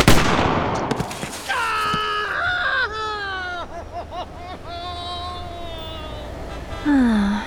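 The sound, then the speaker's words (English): A single loud, sharp gunshot cracks at the start, shooting off someone's toe, then gives way to a long, wavering, high-pitched wail that rises and falls for several seconds. “You shot my toe off!”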